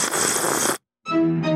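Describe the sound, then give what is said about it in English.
A loud slurping sound effect of an octopus: a wet, noisy gurgle, a brief silence, then a second slurp with a squeaky, almost tonal edge. No one speaks. “Slurping.”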